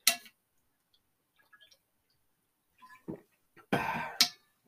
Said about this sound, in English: Excuse me, I'm going to take a swig of water here.